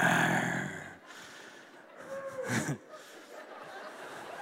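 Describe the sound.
A crowd of people imitates lion growls, producing a rough, breathy, scattered rumble mixed with snorts and chuckles, with a louder burst of growling near the end before it fades.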